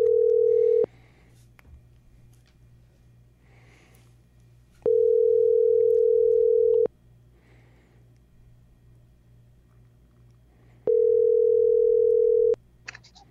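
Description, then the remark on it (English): A phone line rings out: three long steady tones about two seconds each, separated by roughly four-second gaps, with a faint low hum underneath and no voices. “Let's give him a call. See what he's up to. I kind of like this phone thing.”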